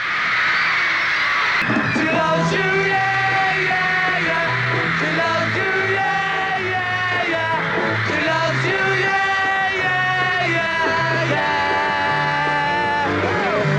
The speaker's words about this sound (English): The first of the 9 concerts took place in a new secondary school hall in Karlstad, which attracted the usual screaming teenage audience.